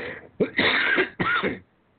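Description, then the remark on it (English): A man coughs and clears his throat, two rough, harsh bursts in quick succession, each lasting about half a second, followed by quiet. “Excuse me, let me cough.”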